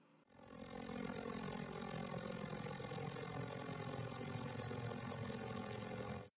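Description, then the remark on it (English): A propeller airplane drones steadily and loudly throughout, its engine hum constant with rich tonal harmonics, starting abruptly after a brief quiet moment. “Okay, I think Winky has control of the plane again.”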